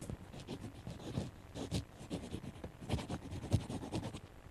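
Pencil scribbling on paper, fairly quiet, a steady run of short scratchy strokes with a few sharper ticks, continuing without pause for several seconds and no voices.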